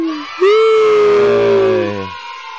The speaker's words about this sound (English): Oh, wait, we got that. We got that right here. Oh, let's give her some cheering.